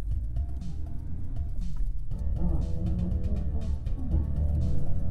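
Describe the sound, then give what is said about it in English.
A car engine turns over and catches, then settles into a steady low rumble that builds as the vehicle pulls away, fairly loud with no talking. “They get in their car, connect to their Bluetooth, press play, and set off for work.”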